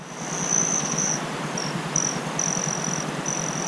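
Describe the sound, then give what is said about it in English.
A male hummingbird's dive chirp, made while dive-bombing at very high speed within a 300-millisecond window: thin, high-pitched whistling tones repeat in several short bursts over a steady hiss with faint rhythmic ticking underneath. No one speaks. “That is the sound of a male hummingbird dive bombing at very, very high speeds in a 300 millisecond window”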